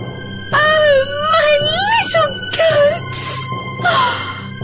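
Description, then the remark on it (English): A woman lets out loud, high-pitched screaming wails in four or five bursts, her voice sliding up and down in pitch, with a sharp breathy gasp between cries and no talking. “When she saw the door open, she knew something bad had happened and started to scream.”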